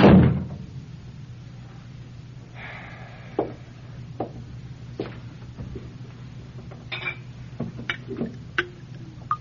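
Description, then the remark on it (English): A door closes: a loud thump at the start, then a scattering of sharp clicks and knocks over a low, steady hum, with no one talking. “Close the door on your way out.”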